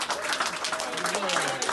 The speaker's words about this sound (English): Everyone cheering in this video knew the COVID-19 patient had cheated death.